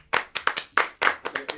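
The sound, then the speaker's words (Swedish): A short burst of applause for a newly hired editor: roughly eight sharp, crisp hand claps in a quick, slightly uneven rhythm, fairly loud, with no voices over them. “Vi kan väl säga det också när vi nu pratar om klippning och sådär, att vi har ju skaffat en klippare. Applåd!”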